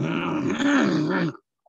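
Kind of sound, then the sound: human body sound, throat clearing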